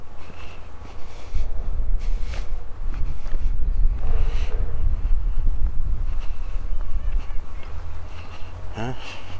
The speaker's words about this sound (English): First sign of the duck. It indicates we're getting near to the water.